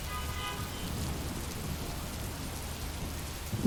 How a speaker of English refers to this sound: Suddenly, I have the urge to close my eyes and just listen to the pouring rain.